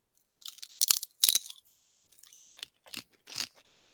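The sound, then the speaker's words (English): Loud crunching of thick, seasoned New Orleans kettle-style potato chips being bitten and chewed, a few sharp crisp bursts in an irregular rhythm with quieter crackles between, no talking. “It's got that nice crunch.”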